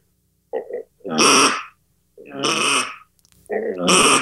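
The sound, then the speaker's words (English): A hand-blown duck call sounds the drawn-out, lonely quack of a mallard hen: loud, raspy, nasal notes in a slow series of about four calls, with no talking. “Or the lonely mallard hen.”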